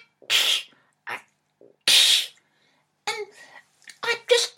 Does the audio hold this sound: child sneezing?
yes